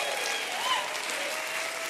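A church audience clapping their hands in steady, dense applause when asked to clap and say amen, a continuous wash of many overlapping claps at an even volume for the whole stretch, with no voices standing out.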